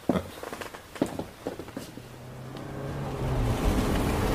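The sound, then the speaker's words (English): A few footsteps, then a sports car's engine rumbles up at night and builds into a steady, growing drone as the car pulls away, gradually louder. “My car's rather drafty. Sports cars always are.”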